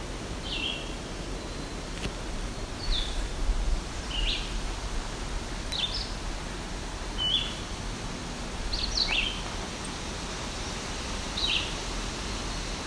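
A black-throated green warbler gives thin, high, buzzy notes in short bursts every second or two over a steady hissing, rustling outdoor background. No one speaks.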